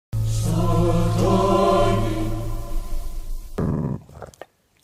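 Deep, sustained growling and snarling from Rottweilers attacking Gregory Peck and David Warner in a graveyard in Italy in a film scene, a low rumbling tone that holds loudly for several seconds before breaking into harsher, noisier bursts and fading out.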